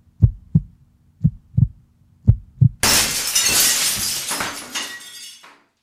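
Three pairs of dull, thumping heartbeats, then a loud crash of shattering glass with tinkling shards that rattle and settle before fading out. No one speaks. The sound effects form a clue to a song title.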